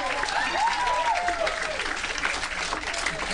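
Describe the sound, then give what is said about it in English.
A crowd claps steadily, a dense, even wash of many hands sustained throughout, with a few faint voices and whoops rising briefly above the applause near the start. “I won't question what you guys deem worthy of applause, but I just won't.”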